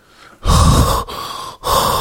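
Three loud, rough breaths, each a harsh airy rush separated by brief pauses, like someone panting heavily with no speech.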